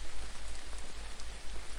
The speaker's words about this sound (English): As you stand watching out your window, you notice soft rain begins to fall from the clouds. It looks like a gentle mist, slowly making its way toward the earth.